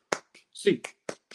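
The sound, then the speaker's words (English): Five or so sharp, crisp hand claps by UCLA Bruins fans in a loose rhythm, with a short voiced shout breaking in between them partway through. “All right, Bruins fans, get your hands up, everybody. A clap time.”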